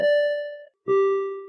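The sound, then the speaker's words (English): A two-note bell chime, rung to celebrate a runner's course personal record at a 5K race, rings out clearly, a higher ding followed after a brief gap by a lower tone, each note sustained and slowly fading, with no other sounds. “Andrew ran a course PR. Those count. Hit the bell.”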